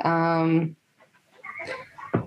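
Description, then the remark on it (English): A drawn-out creaking tone is followed by faint shuffling, then a single solid thud as a room door is pushed shut. “All right, let me shut the door because the door magically flew open when he came in.”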